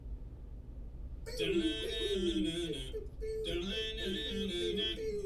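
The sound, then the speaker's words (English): Loud a cappella dubstep: voices mimic synth wobbles and bass with buzzy, pitch-sliding vocal sounds, starting after a brief quiet moment, pausing once, then resuming with no instruments. “It's acapella dubstep.”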